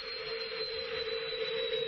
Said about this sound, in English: Oh, no! The door! It's opening!